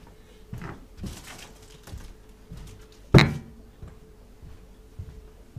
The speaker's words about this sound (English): So feel free, and for the record of the recording, I'm now going to move the bin by the door.